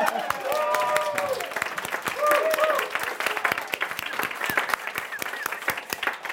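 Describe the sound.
An audience breaks into steady, dense applause, many hands clapping continuously for several seconds, with a few voices calling out briefly over the clapping early on.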